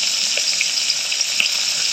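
Steady, close sizzling of food frying in hot oil, a dense crackling hiss with scattered sharper pops, continuous for the whole moment with no voices.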